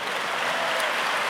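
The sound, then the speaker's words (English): An audience gives a round of applause to the Lord, a dense wash of many hands clapping at once, sustained and fairly loud throughout the short moment with no voices standing out. “Let's give a round of applause to the Lord.”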